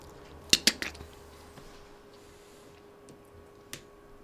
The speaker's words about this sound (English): I try the door, the handle.